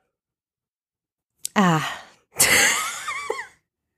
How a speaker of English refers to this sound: Beautiful. That was a beautiful sneeze.